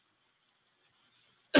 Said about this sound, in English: Excuse me, I keep coughing.